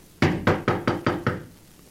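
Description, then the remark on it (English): Six firm, evenly spaced knocks on the wooden door of a house, rapped from the porch, sharp and in a steady rhythm before falling silent, with no voices present. “You going to knock?”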